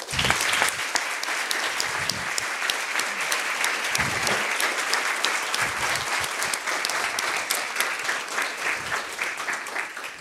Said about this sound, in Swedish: Jag tror att det bara återstår för mig att välkomna kvällens gäst. Så en varm applåd för